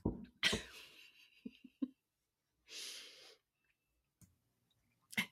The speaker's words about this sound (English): Hold on. I'm going to tell my kid to stop coughing.